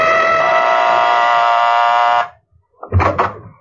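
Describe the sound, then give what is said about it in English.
A loud, steady electric doorbell at a house on the east side of town buzzes continuously for about two seconds, then cuts off; after a brief pause comes a short, rattling thump. “I rang the doorbell.”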